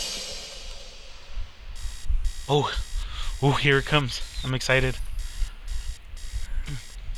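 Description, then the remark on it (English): An alarm clock rings in a steady, rapid series of electronic beeping pulses, fairly loud, as part of a recorded album track meant to depict someone waking up to an alarm, while a man talks excitedly over it. “It's supposed to be somebody waking up to an alarm”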